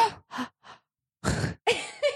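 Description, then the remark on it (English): A voice makes three quick breathy gasps, each fainter than the last to imitate an echo of its own gasp, then follows with a louder, drawn-out breathy gasp and sigh. “You just tried to do like a weird echoey gaspy thing. Yes, I tried to echo my own gasp.”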